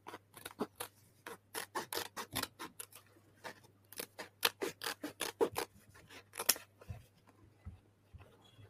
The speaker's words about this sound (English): Yeah, so we'll just get your favorite Arsenal battle braid scissors. And you just start hacking away.